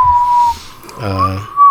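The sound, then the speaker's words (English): A person whistles one steady, high note, trying to hold it out. It drops out briefly while someone speaks, then the whistle comes back, clear. “Trying to hold out the whistle.”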